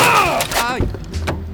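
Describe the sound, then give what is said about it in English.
A car strikes a cyclist in a bike lane in Paris: a few dull, heavy thumps and clatters land in quick succession while a voice yells over the impact. “Vous venez de me percuter avec votre voiture.”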